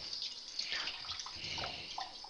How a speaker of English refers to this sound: Get a little water running here.